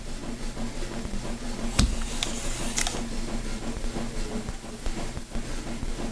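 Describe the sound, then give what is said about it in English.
A food pump feeding a man through an external stomach runs at mealtime with a steady low mechanical hum and hiss, broken by a few sharp clicks and faint ticks. No one speaks. “He can't eat, but every day around mealtime, he says, he would turn on the food pump.”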